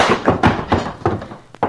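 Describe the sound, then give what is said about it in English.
A flurry of punches lands on a jaw in quick succession in a fistfight, around half a dozen dull, heavy thuds hitting at an uneven pace, with no voices in between. “you rattled my teeth, but that's all.”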